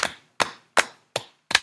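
Five sharp, evenly spaced hand claps in a slow, steady rhythm, a slow golf clap with each crisp clap fading quickly. No voices.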